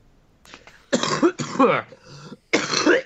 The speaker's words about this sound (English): just starts coughing up her lungs.